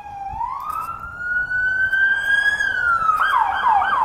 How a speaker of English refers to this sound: There's the LAPD police tour with lights and siren.